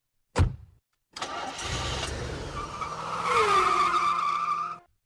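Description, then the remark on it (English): A single sharp thud, then a car roars off with tires screeching loudly, engine and squeal rising together for about four seconds before cutting out. Intense, with no talking. “Now we pick up KK in the car on the run.”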